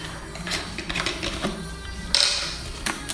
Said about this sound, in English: So I've got my bottle. Probably hear that there's virtually nothing left in it at all.